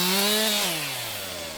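A loud chainsaw motor buzzes at a steady high pitch for a moment, then its engine note slides downward as it winds down. No one speaks.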